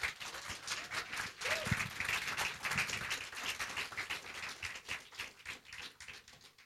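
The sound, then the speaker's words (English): An audience gives a clap offering to their pastor, clapping together in a dense, sustained burst of applause, many hands overlapping into a steady crackling wash with no single beat standing out, lasting several seconds. “Give a clap offering to your pastor.”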